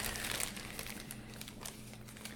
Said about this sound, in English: Yes. I'm going to draw the name. My hands are rifling through the slips of paper.